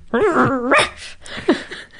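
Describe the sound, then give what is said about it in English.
A voice imitates a dog's sleepy dream noises: a wavering, whiny growl followed by a few soft, muffled little barks, moderately loud. “I love when my dog growls and barks in her dream.”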